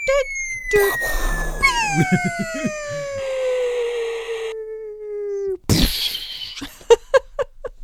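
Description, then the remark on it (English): A voice imitates the explosion noises of the electronic version of the Battleship game: a long whistling tone slides steadily downward for several seconds, then bursts into a loud, noisy blast followed by a few short sputtering pops. “You know what I like was the electronic version of Battleship.”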